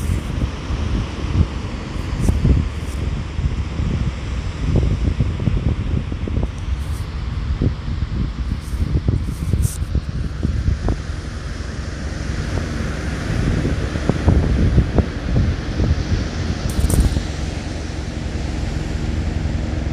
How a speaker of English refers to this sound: Listen to the sounds of the waves of the ocean.